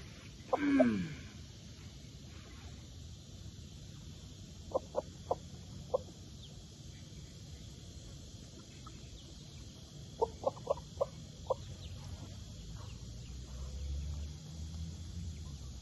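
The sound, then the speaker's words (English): Backyard chickens, including a silkie hen and a frizzle rooster, clucking as they are fed breadcrumbs: a quick series of short clucks in two bursts separated by quiet, with a louder squawk near the start and a steady outdoor hum underneath. “Come on, little silky mama. Come on, my frizzle rooster. Come on, the food's over here.”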